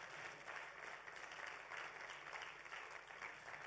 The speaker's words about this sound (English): Ladies and gentlemen, can we give God glory? Go on, let's just honor God with a clap offering. Honor God with a clap offering.